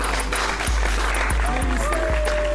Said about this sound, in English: My wife is on the podcast. Y'all give a round of applause for her.